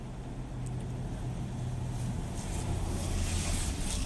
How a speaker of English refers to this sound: oh, just a minute, a passing truck, very loud one.